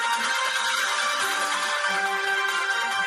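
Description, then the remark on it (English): A breaking-news sound effect plays from a phone speaker: a loud, dense musical sting of sustained bright tones that fills the moment without any talking over it. “Did you just pull out your phone to play a sound effect? A breaking news sound effect.”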